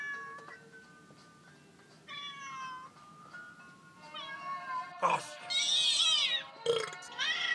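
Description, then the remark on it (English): A cat meows several times in strained, rising cries, then a sudden loud gulp and a belching burp break in near the end as the cat is swallowed down, prominent with no talking. “You just scarfed that cat down!”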